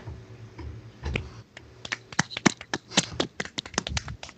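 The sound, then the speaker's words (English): A quick, uneven burst of hand clapping: sharp, light claps lasting a few seconds over a low background hum, with no one talking. “I was clapping for you.”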